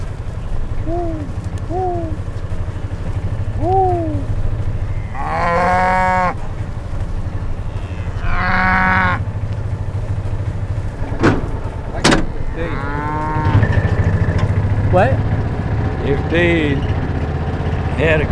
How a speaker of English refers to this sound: How are you, Miss Cow? You ain't talking today, are you?